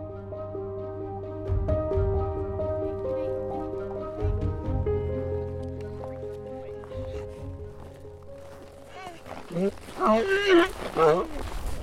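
Donkeys in a pasture bray loudly near the end, wavering, hoarse calls rising over a steady tonal backdrop, with soft thuds and shuffling of the donkeys swarming about earlier.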